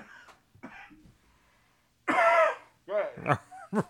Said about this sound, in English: Yeah, I went down the wrong side. I didn't want to cough into the mic.